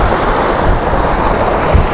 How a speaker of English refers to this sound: So, as well as the sound of the wind, you've now got to contend with the sound of the water.